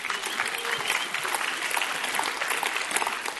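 A crowd applauds steadily, the dense patter of many hands clapping filling the space for a few seconds, with faint cheering mixed into the sustained roar.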